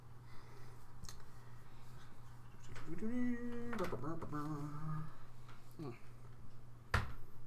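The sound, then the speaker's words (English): A few sharp, scattered clacks of dice tumbling onto a hard surface, rolled for a spellcasting ability check, fairly loud, with a brief murmuring voice in the middle and a steady low hum underneath. “So roll that dice.”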